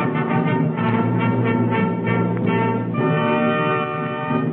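A loud, sustained blast of many trumpets sounding together in a dense, brassy chord. It holds steady throughout, with the pitches shifting slightly partway through, and no voices.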